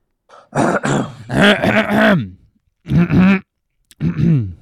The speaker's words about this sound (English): Next time this happens and somebody tips you and you think it's short, just keep your hand out and just clear your throat a bunch.